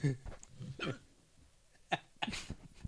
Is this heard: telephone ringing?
no